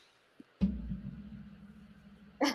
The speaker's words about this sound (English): It was a cough, and I just got tested on Thursday, and it was negative.